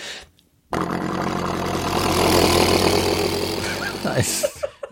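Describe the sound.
A person makes a helicopter noise with their mouth, a steady low throbbing whir with rapid rhythmic chopping that starts abruptly after a brief pause, holds loudly for about four seconds, then breaks off.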